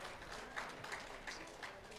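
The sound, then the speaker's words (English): An audience applauds steadily at a music evening, a dense wash of many hands clapping at an even, sustained level with no voices rising above it, a round of applause for the president of Dolly Club before the second set. “Nothing would have happened without a big round of applause for your president, please, ladies and gentlemen.”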